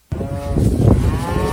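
A cow lets out a single long, loud moo, a deep droning bellow that starts abruptly and holds steady for over a second, with no talking over it.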